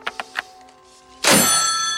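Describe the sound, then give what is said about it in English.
A few light plastic clicks of a handset being fumbled, then a loud, hard slam of a telephone receiver onto its cradle as a man angrily hangs up in an Eastwood movie, leaving a metallic ringing hum that sustains to the end. “Here's him hanging up the phone real mad.”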